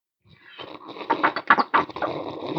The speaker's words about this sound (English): Yeah. It's hard to slurp out of a bottle. I tried. It is. I just learned that for the first time in my life. That is a challenge. I'm impressed you got any sound out of that.